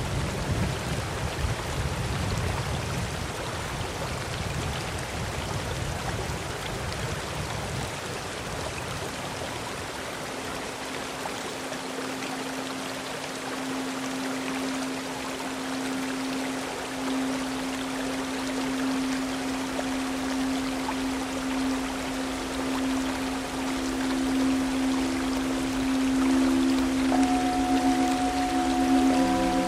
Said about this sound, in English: The only thing I can hear right now, the only sound I can hear right now is the sound of a waterfall and the river that it runs into.